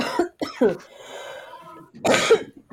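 A few sharp coughs in quick bursts, with a short raspy throat-clearing stretch between them, then a final loud double cough.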